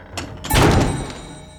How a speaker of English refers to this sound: Minos walked out. When the king shut the door, Theseus and Princess Ariadne were alone.